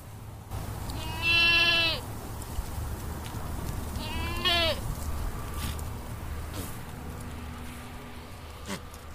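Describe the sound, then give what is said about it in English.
Two drawn-out, wavering bleats from goats in a grazing pen, provided by Goat Bros for grazing as a land management tool, sound a few seconds apart over a steady outdoor hum with faint insect buzzing and no talking. “That was KGNU's Sam Fuqua speaking with Jordan Sarazen of Goat Bros, which provides goats for grazing as a land management tool.”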